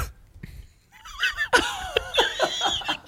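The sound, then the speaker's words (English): A voice mimics how a man sneezes, a sharp, cough-like burst, while laughter breaks out around it in quick, bubbling pulses. “when he sneezes, you won't think it's a sneeze. What do I think is? What I think is? What well, I've told you now. He sneezes like this.”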